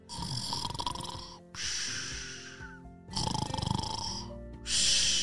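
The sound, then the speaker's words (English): A voice imitates the loud snoring of Fluffy the chicken in a told story: a few long, rough, buzzing inhale-exhale cycles in a steady rhythm, with short pauses between breaths. “Have you ever heard a chicken snore?”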